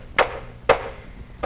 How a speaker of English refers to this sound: Oh, he's got a wooden hammer now and banging away.